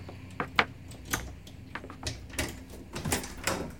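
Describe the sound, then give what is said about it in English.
A side door opens and shuts: a series of sharp latch clicks and rattling knocks, then a couple of heavier thumps as it closes, with no voices. “We'll go in the side door.”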